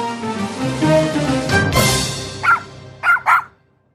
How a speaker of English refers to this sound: And if you think horses whinny when they hear that chili, wait till they start hearing those dogs barking. We're gonna, and it's a little dog.